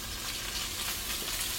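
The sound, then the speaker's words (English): Steady sizzling of ground chicken frying with softened onions in a hot pan, a continuous crackling hiss with a brief spatter near the end and no voices. “I love that sizzle.”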